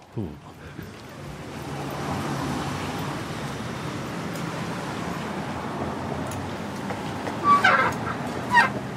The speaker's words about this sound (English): just a short bus ride over to HeadGum